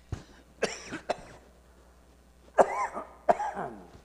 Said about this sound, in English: Excuse me, folks, my cough drop's not working too good, and my water's not drowning the cough good enough, so we just have to get through it.